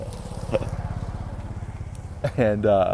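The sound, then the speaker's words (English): A small moped engine putters with a steady, rapid low chugging, then grows louder into a buzzing, rising whine as it passes by near the end. “Here comes another moped.”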